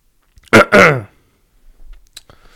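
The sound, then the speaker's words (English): A single loud sneeze during a sneezing fit: a sharp inhaled catch followed by a forceful voiced burst, then quiet rustling and a small sniff or click afterward. “but I can't stop sneezing.”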